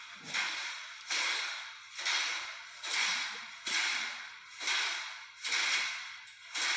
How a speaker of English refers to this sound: All right, so I'm seeing a row of lockers slamming against the wall with clearly no one standing there.